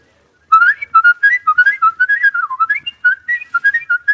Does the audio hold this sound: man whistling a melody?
yes